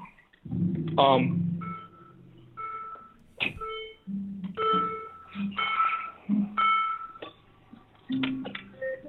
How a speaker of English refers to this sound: I'm about to start my car up real quick.